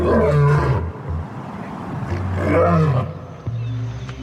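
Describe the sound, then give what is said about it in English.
A lion roars in two deep, heavy bursts, each a rumbling groan with strong low-end power, separated by a brief lull, loud with no talking. “But all that to say, you can feel a lion's roar from miles away because I for sure thought that thing was right outside the door.”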